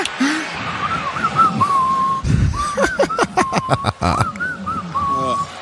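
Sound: person whistling a tune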